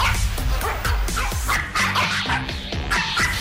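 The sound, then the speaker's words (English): Several dogs bark and yip excitedly in rapid, overlapping bursts, loud, with a continuous rumble of low background noise underneath. “We play a random dog bark.”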